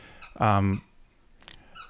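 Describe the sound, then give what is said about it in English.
A dog squeaks a squeaky toy: one loud, drawn-out squeal, followed by a few fainter, shorter squeaks trailing off. “Oh, my dog's got the squeaky toy.”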